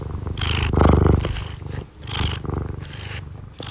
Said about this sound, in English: He purrs when he's happy, but he also purrs when he's hungry and when he thinks he's about to get food. So I have a lot of questions about what's actually going on in his little body when he purrs. But I mean, listen to these good vibrations.